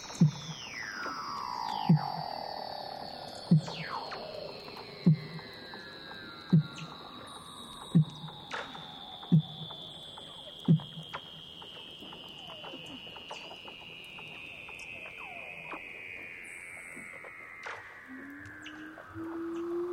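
Weddell seal territorial calls in mating season, recorded by Douglas Quinn through 6 feet of ice in Antarctica: long, eerie whistles gliding slowly downward, overlapping one another, with a steady series of low, regular knocking pulses underneath.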